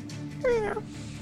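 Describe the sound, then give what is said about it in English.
A person briefly voices a monster's roar: one short, strained, pitched cry that slides downward, over a steady low background hum. “Takes a ready stance, and roars at the party.”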